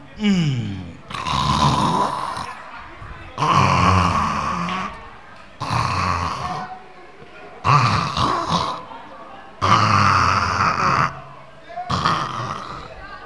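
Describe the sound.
A man imitates snoring with his voice, making about six loud, rasping, drawn-out snorts in a steady rhythm, each separated by a brief pause.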